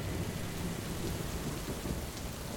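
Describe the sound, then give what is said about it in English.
A night storm of rain and snow in the hills near Beit Sahor: heavy rain pours down steadily while deep thunder rumbles low underneath, loud and continuous throughout with no voices. “Jalal Khumsia stepped out into the storm, and some 25 boys ran up to the trucks.”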